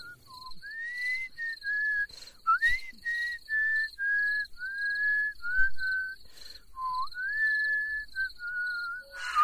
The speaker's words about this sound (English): He's whistling Christmas carols in October.